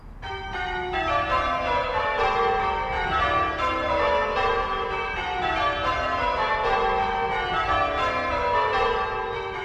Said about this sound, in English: Bells, especially church bells, have been associated with Christmas for a very long time around the world.